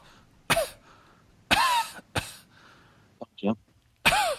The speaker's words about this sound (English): I've got a cough.